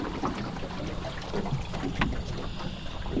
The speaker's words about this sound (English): She kills the engine, and we sit and listen a moment to the marsh.